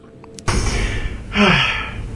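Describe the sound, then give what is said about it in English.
A person with a long-lasting cough and sore throat coughs: a sudden harsh cough bursts out and trails off raggedly, followed about a second later by a second rough, breathy cough, with no talking. “As you can see, I have a little bit of a cough going on here.”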